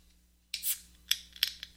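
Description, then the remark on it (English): An ice-cold beverage can with a pop top cracks open with a sharp pop and a brief fizzing hiss, followed by a few quieter metallic clicks and scrapes, before it is poured into a glass. No one speaks. “So let's go ahead and we'll start off with our experience in cracking the old can open here, and then we'll give it a pour.”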